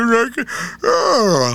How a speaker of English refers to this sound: As I yawn through Colonies.